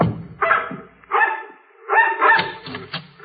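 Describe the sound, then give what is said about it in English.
A mongrel dog barks about four times in an uneven rhythm, fairly loud, each bark ringing with harmonics, at people's heels as they climb a rickety porch in the cold. The last bark is longer and drawn out, with no voices over it. “They stared at us while we went up the rickety porch, the dog barking at our heels.”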